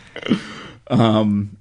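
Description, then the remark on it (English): A person makes a vocal fart imitation: a short buzzy burst followed by a longer, louder, drawn-out raspberry-like blow with a strong low harmonic tone. “And then the moment you realize that you wasted that time, go, oops, clutch your heart and fart.”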